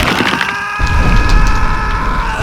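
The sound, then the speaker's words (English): A burning warhammer, the Pyre Paladin's Flame Hammer, swung after he leaps from an overturned van, slams into the ground with a heavy, booming impact, followed by a loud splintering, crackling crunch and a deep rumble that carries on for about two seconds. “Leaping from an overturned van, the Pyre Paladin calls forth his elemental weapon and slams the burning Warhammer into the ground.”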